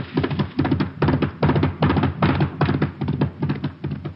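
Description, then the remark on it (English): An approaching horse's hoofbeats pound in a quick, uneven galloping rhythm, a steady run of dull thuds repeating about twice a second, fairly loud and with no voices. “Wait, listen. My horse is coming.”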